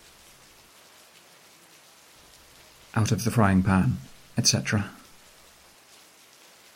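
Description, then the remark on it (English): Steady, soft rain hisses evenly throughout, with a man's voice speaking a short phrase in the middle before the rainfall continues alone. “And so I ran on, into darkness, away from home, away from my mother, on into the rain.”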